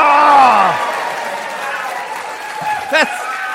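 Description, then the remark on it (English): An audience breaks into sustained applause mixed with cheering and whoops, a dense wash of clapping with a few rising shouted voices cutting through near the end. “That's the biggest round of applause I get tonight.”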